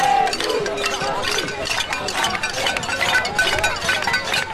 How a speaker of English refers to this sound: And there was some pot banging on Monday's May Day rally, Sarah, along mm-hmm. with the usual chanting and, alas, violence between some protesters and the police.